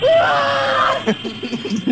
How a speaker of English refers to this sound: You just hear me screaming.